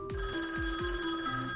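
A telephone rings with a steady, buzzy electronic tone and a repeating warble pulsing through it, fairly loud with no one speaking.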